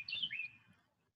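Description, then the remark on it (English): Quick, bright bird chirps and tweets in a short burst lasting under a second, fairly clear, then fading out. “The birds are rooting for you.”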